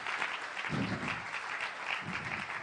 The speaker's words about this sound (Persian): لطفاً یه تشویق بکنید پدرم رو، به خاطر اینکه امروز به خاطر کارآفرین روی استیج ایستادم.